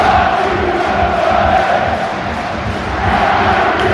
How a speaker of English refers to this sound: Got to try and find a way to silence this crowd.